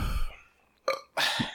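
A low, croaky burp, followed by a couple of short, harmonic voiced bursts like a second belch or a grunt, with quiet gaps between.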